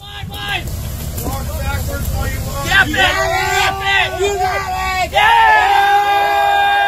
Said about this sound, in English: And the crowd cheers as he wrestles that yellowtail away from that giant sea lion.